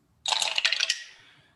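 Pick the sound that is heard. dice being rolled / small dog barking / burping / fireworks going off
dice being rolled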